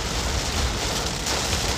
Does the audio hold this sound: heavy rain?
yes